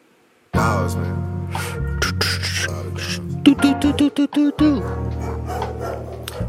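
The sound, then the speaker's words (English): A bass-heavy music track with vocals, where a quick cluster of sharp dog barks bursts out midway, loud and rhythmic, before the beat carries on. “Oh, you got the dogs in this one.”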